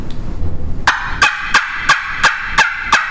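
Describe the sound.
A turkey call makes a loud run of about seven sharp, raspy yelps, evenly spaced and steady in rhythm, with no one talking. The caller uses separated bursts of air, pulling the air back with the throat.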